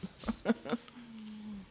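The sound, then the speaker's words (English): A dog makes a few quick, quiet yips followed by a longer, steady whine, fairly soft, with no clear talking over it. “The dog is what's getting it. It sounds like he might want something.”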